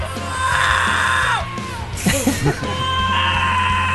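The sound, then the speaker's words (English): A man briefly imitates a harsh hardcore-style vocal yell, a loud raspy shout in a couple of strained bursts, over a steady background hum. “I can't do it without coughing. Just yelling, man. It's just yelling.”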